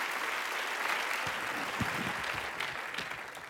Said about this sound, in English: I thought I'd hear a greater clap on that.